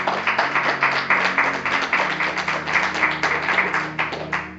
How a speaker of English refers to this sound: Come on, give God a round of applause, church.